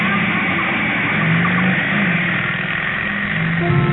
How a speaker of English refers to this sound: A motorcycle, jet-propelled by a black-haired lunatic in a leather jacket with a blonde beauty riding behind him. The handlebar missed goring me by inches.